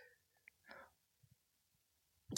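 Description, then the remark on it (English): A short breathy intake, a quiet pause with a couple of faint clicks, then a sudden loud, explosive sneeze bursting out close to the microphone at the very end. “Is this our first on-mic sneeze?”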